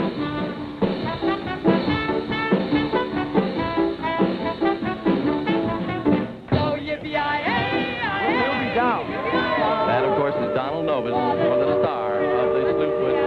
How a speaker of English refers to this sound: That whistle you hear, ladies and gentlemen, means that the Mark Twain is ready down at the dock.